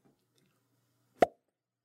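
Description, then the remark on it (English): A single sharp cork pop from a Wink wine bottle, short and bright with a quick hollow resonance, standing alone after a near-silent lead-in with only a faint low hum. “You pull it out of the box. Your husband walks in. Hi, hubby. And you open it. You pop the cork.”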